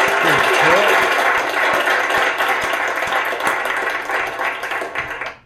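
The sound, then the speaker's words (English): A steady round of applause with crowd cheering for several people's birthdays, dense and loud for about five seconds before cutting off quickly at the end. “Let's give him all a round of applause.”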